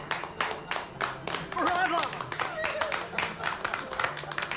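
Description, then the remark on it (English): A man in a film scene claps steadily and fairly quickly throughout, the sharp claps prominent, while voices murmur and call out underneath. “Yeah, the focusing on him clapping.”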